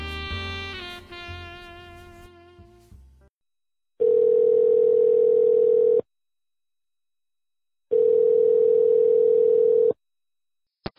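Music fades out, then an outgoing call to a friend rings: two steady, two-second buzzing ringback tones at a low-mid pitch, each followed by a two-second silence, with a brief click at the end.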